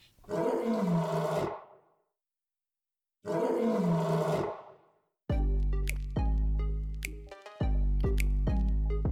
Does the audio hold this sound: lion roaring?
yes